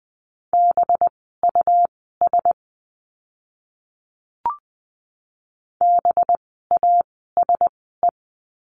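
Morse code practice words for the letter B, sent at about 20 words per minute: clear, steady mid-pitched beeps in quick dot-and-dash patterns, forming two short bursts separated by a pause with a single soft click, no voices.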